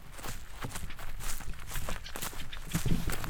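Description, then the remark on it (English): Footsteps walking outdoors at a steady, unhurried pace as people head back to the start of a bee survey plot, each step a soft crunching thud over a constant rustly background, with no one talking. “so we're going to head back to the beginning of the plot where we started the route, and we'll sit down and start IDing and tagging them.”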